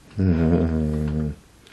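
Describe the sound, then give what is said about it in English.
A dog, Elsa, lets out one drawn-out, loud vocal sound, a steady whining groan lasting about a second, with no one talking over it. “I don't know why this is the time that Elsa decides to make as much ruckus as possible.”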